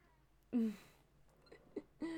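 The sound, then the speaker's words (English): A cat meows: one drawn-out, whiny call, then a few shorter chirps, and another meow at the end, with quiet background between them and no talking. “Hi, cat.”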